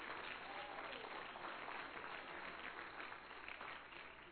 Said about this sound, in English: You may be seated. Would you clap your hands one more time to the Lord? Because you love Him.